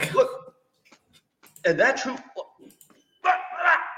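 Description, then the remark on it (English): A voice imitates a Georgia Bulldog barking: three gruff, drawn-out bark-like bursts with short pauses between them, fairly loud. “And then there's this type of dog, dude.”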